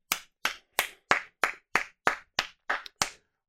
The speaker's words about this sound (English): Let's clap it up for Bobby. Hell yeah. Hell yeah.